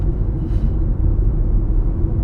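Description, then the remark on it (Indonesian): A steady, loud low-frequency rumble of city traffic in front of Ratu Plaza in Jakarta, with heavy vehicles and three empty TransJakarta buses rolling past, continuous throughout with no voices. “Tapi ini sekarang gue lagi lewat di depan Ratu Plaza, ada 3 busway, bus Trans Jakarta yang bagus-bagus, kosong gitu.”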